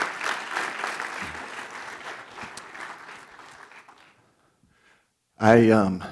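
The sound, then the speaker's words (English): A church audience applauds with steady, dense clapping that gradually fades out over about four seconds, followed by a brief silence before a man begins speaking into the microphone. “Church family, give them a round of applause.”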